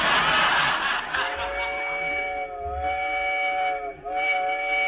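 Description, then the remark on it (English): A slow train rumbles steadily along the rails on a rough, bumpy ride, with a hiss of steam at the start and then a long, wavering whistle sounding over the constant low clatter. No one speaks. “Shucks, this is the slowest train I ever rode on.”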